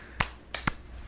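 A lone man claps three times, sharp crisp smacks in an uneven rhythm: one clap, a pause, then two quicker ones, with near silence in between and no voices.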